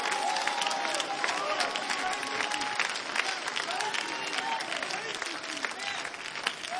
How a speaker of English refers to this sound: That's why we clap our hands. That's why we are worshipers.